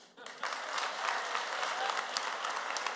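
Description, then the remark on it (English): An audience applauds to vote on whether a man will make a wise decision in picking one stack of Oreos, many hands clapping in a dense, continuous patter that swells quickly and holds at an even level throughout. “And before you do, how many of you by applause think he's gonna make a wise decision?”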